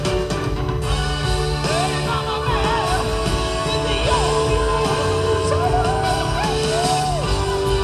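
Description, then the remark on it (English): An 80-year-old singer yells out a song in a high, strained falsetto over a loud, dense band with a drummer and crowd noise, steady throughout, recorded as a distorted, lo-fi cell phone video on a Motorola flip phone. “That's a yelling song.”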